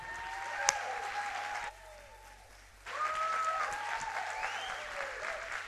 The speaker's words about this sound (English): Somebody clap your hands and shout, nobody's folding.